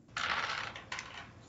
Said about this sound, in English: Give me a demon's roll with... I'll give you three dice.